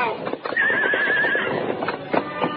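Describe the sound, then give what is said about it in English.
A sleek black horse gives a loud, wavering whinny while its hooves clatter and scrape in quick, uneven bursts as it starts down a steep, rocky slope and loses its footing. “Finally, the horse started downhill. Then, without warning, the animal lost its footing.”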